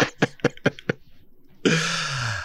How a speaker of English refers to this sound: This is my signature, by the way. I have to, every podcast I've ever done, I blow my nose on.